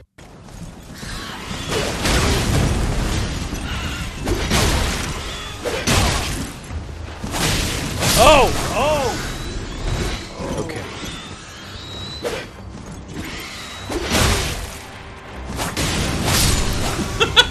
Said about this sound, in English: Yeah. I made sure to include some familiar sound effects. Some very Souls-like death sounds mm-hmm. in that one.